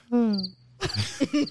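A cricket-chirping sound effect played after a joke: short bursts of a quick high trill repeating a few times over about a second and a half, with a tonal hum before it and busier noise in the latter half.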